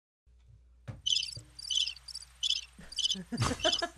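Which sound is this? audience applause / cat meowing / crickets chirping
crickets chirping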